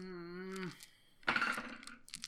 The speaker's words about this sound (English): Who keeps playing with her dice? I was rolling a dice. No, before that, it sounded like somebody was squeezing a pile of dice. It's me, sorry. Okay. I'll stop. Because it's coming through on the audio.